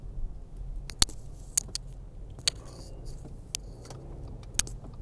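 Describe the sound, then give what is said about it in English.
A truck in a city rumbles low and steady outside, a dull engine drone under sharp, scattered metallic clicks and jingles. No one speaks. “Oh, this fucking asshole truck.”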